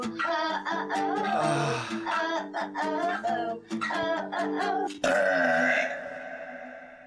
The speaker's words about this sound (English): So it ends with her in her parents' Mercedes fanning herself with a bunch of Canadian bills. And belching. And belching.